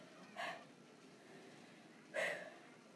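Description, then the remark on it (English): Two short, breathy gasps for air, spaced almost two seconds apart, each a quick rushing intake of breath, fairly soft, with only quiet room noise in between. “… gasping for air.”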